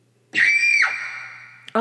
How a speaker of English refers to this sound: whenever we figure out that it's 2 a.m. and we're still in the studio, it's supposed to be a scream, but.